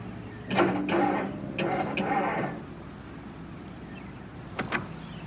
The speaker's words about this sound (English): Well, I don't know what's wrong. Nothing seems to be working. Can't even get the car started.